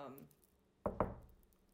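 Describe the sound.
Two quick knuckle knocks on wood, crisp, the second following a beat after the first, with a brief trailing bit of speech just before them, knocking on wood after saying a bracelet has not broken.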